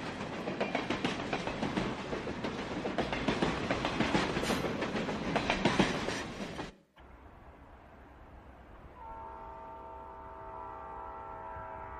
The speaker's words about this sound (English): Hear the train moving. People on their way to their death coming.